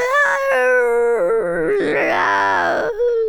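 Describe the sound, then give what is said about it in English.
A voice imitates the horrible scream of a creature engulfed by a fireball and incinerated, a loud, sustained wail lasting about three seconds that wavers and breaks in pitch, growing rougher and more strained before trailing off. “One of them, this fireball engulfs it, and it just incinerates, screaming all the while in this horrible sound.”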